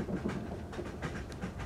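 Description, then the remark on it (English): A steady rumble inside a train moving at 90 miles an hour, with a dense low roar and faint rhythmic clicking from the wheels running throughout, and no voices. “Jump off a train moving 90 miles an hour?”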